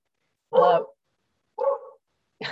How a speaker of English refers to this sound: Don't worry about the dog. We've had that a lot, and it's actually lovely to hear dogs, weirdly.